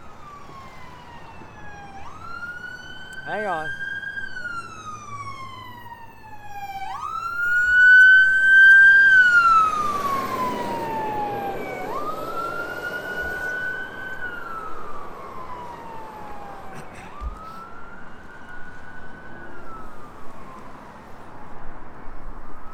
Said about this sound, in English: Hang on, siren.